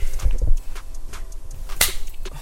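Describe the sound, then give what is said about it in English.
A single sharp, crisp hand slap from a dap handshake in an Airbnb cracks out near the end, preceded by a couple of soft, dull thumps of hands moving together. No one speaks. “Yo, dab me up real quick.”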